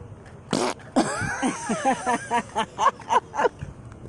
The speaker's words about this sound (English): Sometimes I do it with my mouth. Other times it's a real fart. I'll be like, I farted.